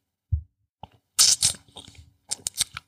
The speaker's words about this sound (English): So I'm like, shit, let me take a little sip of this wine. Mm-hmm.